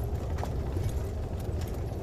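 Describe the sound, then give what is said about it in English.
Horse hooves clip-clop in an uneven, steady series of sharp knocks over a constant low rumble, moderately loud, with no one speaking. “Clatter and clack.”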